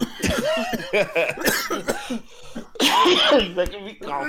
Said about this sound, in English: God damn it. All right, folks. So this is what's going on. Those of you who listen, now I'm coughing and it won't stop.